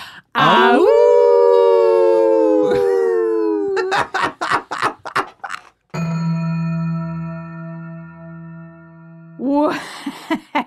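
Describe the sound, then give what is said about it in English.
Human voices imitate wolves: a long, loud, wavering howl, then a quick run of short yipping bursts, a steady sustained drone, and a final brief howl. “We howl out at the end.”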